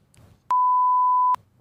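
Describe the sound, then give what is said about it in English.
A single steady censor beep, a pure tone lasting under a second, bleeps out how much a speaker won, sitting loud between faint murmurs, with a voice starting up right after it ends. “Can we beep out how much you won?”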